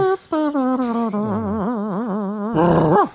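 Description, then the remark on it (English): A person's voice imitates a dog's growl, a wavering, throaty rumble held for about three seconds, fairly loud, ending in a rougher, louder burst. “It's a dog.”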